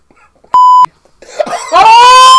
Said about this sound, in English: I'm sorry, boo. I'm beeping that out. I've got to beep. You're beeping it out.